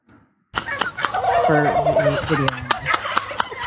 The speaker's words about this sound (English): All right, so what we have here is a guy that's crouched down and he's acting like a turkey, and there's a bunch of turkeys out there, and he's doing a pretty good job. So he's got the turkey walk down.